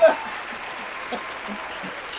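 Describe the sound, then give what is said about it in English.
An audience bursts into a steady round of applause for God, a dense wash of clapping that holds evenly throughout, with a few shouted cheers rising at the start and end. “So, Lord, if anybody deserves a round of applause, it's you.”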